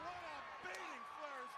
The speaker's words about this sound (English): Piper is slapping the shit out of Flair.